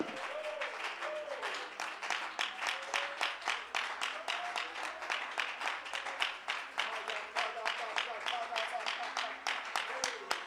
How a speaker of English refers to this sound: Well, let's clap our hands and praise his name together.